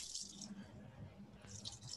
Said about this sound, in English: And on your kiwi, you want to do 3 ounces of your Bacardi, 2.5, but you know, I'm a little heavy, so. Okay. And I'm gonna pour that on up.